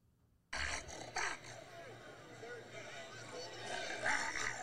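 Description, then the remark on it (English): A man's voice imitates a lion, letting out a long, raspy roar and growl that starts abruptly and rumbles on loudly for several seconds. “He sounds like a dog, actually.”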